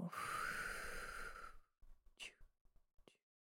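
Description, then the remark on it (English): A long, deep exhale through an open mouth, loud, rushing out for about a second and a half before trailing into a few soft, short breathy puffs. “And when you're ready, open your mouth and let it go.”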